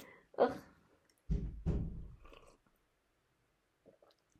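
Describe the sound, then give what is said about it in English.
Close, wet mouth noises of someone slurping lemon tea: a short slurp, a brief pause, then two longer, louder sips run together, followed by quiet and a couple of faint clicks. “And …, so you're over here slurping next to my ear.”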